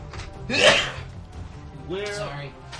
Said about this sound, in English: No more sneezing.